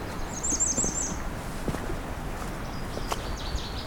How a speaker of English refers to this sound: Oh! We have a northern water thrush? That's, I don't know if that's new. It's definitely a northern water thrush.